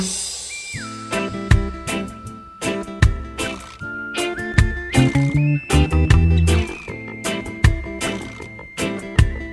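A thin, high whistle-like synth line holds long notes and slides between pitches over a punchy beat of steady drums and deep bass, with no voices.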